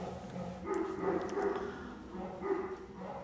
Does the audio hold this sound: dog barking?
yes